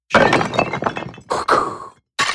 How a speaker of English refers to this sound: And it sounds like clay pots or, you know, pottery in general being broken against more pottery.